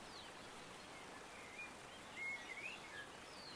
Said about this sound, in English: I'm glad we got the bird sound.